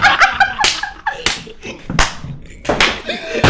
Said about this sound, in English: Yo, you fucking slammed your foot. No, I didn't. Yes, I slammed my foot again. Nothing's going to fall.